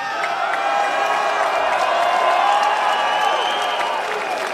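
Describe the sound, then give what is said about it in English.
A large arena crowd at a Hall of Fame induction cheers and applauds steadily, a dense roar of clapping and voices sustained at full volume throughout, with scattered whoops rising above the wash of noise. “Just said, and the response from this amazing crowd just made me realize how important this Hall of Fame induction really is.”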